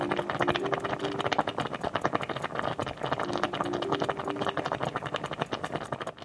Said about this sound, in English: That sounded like something simmering or boiling. Something simmering. What about it sounded like that? It was like bubbling a lot and popping. Yes, simmering or bubbling.